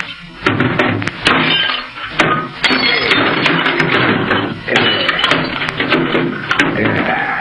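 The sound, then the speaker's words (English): A sustained bout of loud smashing: heavy blows land in quick, irregular succession amid crunching, rattling debris as a shortwave radio set is battered and broken apart, with no speech. “Yeah, to make sure nobody else hears, I'm going to wreck this short wave set.”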